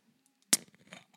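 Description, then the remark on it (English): A bottle of Jones orange cream soda being opened: one sudden, sharp hiss-pop burst, then a second or so of fizzy, crackling sputter that fades out. No one speaks. “It probably sounded like a fart on your end, but that's opening a soda.”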